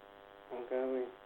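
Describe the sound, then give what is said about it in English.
A steady electrical hum buzzes faintly on a caller's phone line, with a short burst of a voice-like tonal sound rising briefly over it before fading, like interference. “I meant you're literally making a buzzing noise.”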